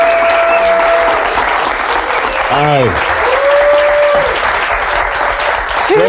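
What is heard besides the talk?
audience applause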